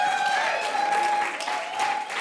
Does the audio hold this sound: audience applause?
yes